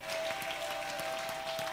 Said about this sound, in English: Give Jesus a clap offering.